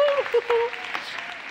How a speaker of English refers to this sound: Amen. Give them a clap. God is in the house.